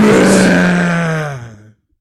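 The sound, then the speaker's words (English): A person's voice imitates a lion's roar for the Detroit Lions football team: one loud, sustained, growling tone that slowly falls in pitch and fades out after under two seconds. “That's a lion. That's a Lions and roaring.”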